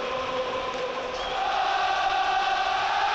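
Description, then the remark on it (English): A large football stadium crowd at Anfield in Liverpool roars after an equalising goal, a steady, dense wash of noise that swells slightly and holds loud throughout, with no voice speaking over it. “The crowd brought alive by the equaliser.”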